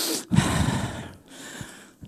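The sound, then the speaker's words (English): A roomful of people breathing out heavily together on request in breathy, noisy waves, two or three long exhales with brief pauses between, loud, with no one speaking. “Can I get somebody to do some intercessory breathing for me, please?”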